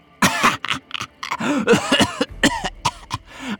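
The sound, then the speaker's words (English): A man's short run of breathy, voiced laughter breaks into a string of rough, hacking coughs, several bursts in quick succession, fairly loud with no talking. “He laughed at her. Then it turned into a cough.”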